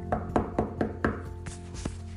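A quick series of solid knocks on a door, about five evenly spaced raps, followed by a couple of softer thumps, with no voices.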